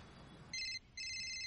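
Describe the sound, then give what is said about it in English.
An electronic telephone ring sounds as Dawson makes an outgoing call to Joey: two bright, high-pitched warbling bursts close together, clear and steady, with only a faint hush before the first one starts. “Yeah, trying to decide to make the call.”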